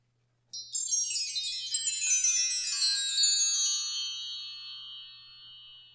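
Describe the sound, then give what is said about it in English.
A cascade of bright, tinkling chimes is played during a timed break, ringing out clearly with no talking, overlapping metallic tones shimmering for several seconds before slowly fading away. “Or if you're not participating, it'll be like, just go in and chime away.”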